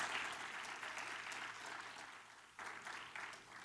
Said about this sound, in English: You can clap better than that. You can clap better than that, church. Please.